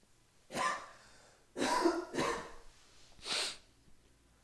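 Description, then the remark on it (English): A series of four short, explosive sneezes, spaced unevenly over a few seconds, each a sharp burst of breathy noise, with no one talking. “Was that a sneeze?”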